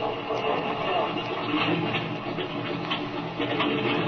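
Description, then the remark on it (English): A small airplane engine is started and idles to warm up, with a steady, rough, rumbling drone that holds an even loudness throughout, with no clear pauses or changes in pitch. “Well, I guess I'd better get in this rear cockpit and start the motor.”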